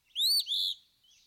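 An eastern phoebe calls once, a clear two-part note with a slight break in the middle, loud, with no other sounds around it.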